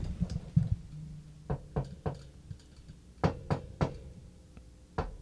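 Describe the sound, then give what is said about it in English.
Light knocks tap on a front door in small spaced groups, roughly three quick taps, a pause, three more, then a single tap, over a faint low hum with no voices. “It's like knocking on the door, like taps.”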